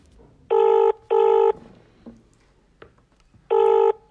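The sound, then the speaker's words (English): An outgoing phone call to an expected guest rings in the classic double-burst pattern: two short steady tones, a pause, then another pair beginning. The ringing is clear and fairly loud, with no talking. “I'll cut out some of these rings.”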